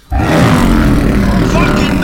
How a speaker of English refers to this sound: Its 4 feet are adorned with massive claws that sink into the ground. It tosses back its head and lets out a roar.